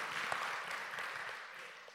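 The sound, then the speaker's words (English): A church audience claps together after hearing that its $30,000 goal for international missionaries was reached, a steady, dense wash of applause that holds fairly level for two seconds, then gradually tapers off. No voices are heard over it. “Yeah, you can clap.”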